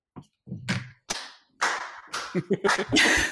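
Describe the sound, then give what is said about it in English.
A man applauding himself: a handful of sharp, crisp hand claps in an uneven rhythm, getting quicker and louder toward the end, with some faint low murmuring underneath. “I mean, he's applauding himself.”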